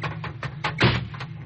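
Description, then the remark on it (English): The bomb hatch doors of a plane are opened with a short series of clunks and a louder latch-like rattle midway, set against a steady low engine drone. “Captain, open the door!”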